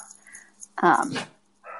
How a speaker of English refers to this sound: Yeah, I think your dogs are barking and Schroeder's my barking. My dogs are barking. And Schroeder's barking too. Schroeder's barking too. So at the same time, they're kind of barking.